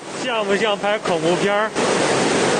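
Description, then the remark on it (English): Floodwater roars steadily through a flooded railway tunnel, turning the tracks into a river, a loud, continuous rushing wash. A man filming on his phone speaks excitedly over it for a moment before the torrent carries on alone. “It's a sound of floodwaters that have turned the railway tracks into a raging river.”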